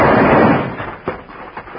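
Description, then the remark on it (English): A single loud six-gun revolver shot at night bursts out and rolls away in a long rumbling decay, followed by two fainter, sharp pops. “Then a thundering six-gun tore the night apart.”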